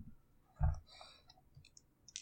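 Dice rattle onto a tabletop: a dull knock, then a scatter of light, sharp clicks as they tumble and settle, fairly quiet, with no talking.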